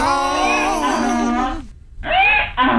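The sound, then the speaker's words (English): A loud donkey bray sound effect: one long, wavering honking call, a brief pause, then two shorter raspy heaves, with no talking. “Oh, now you are the donkey of the day.”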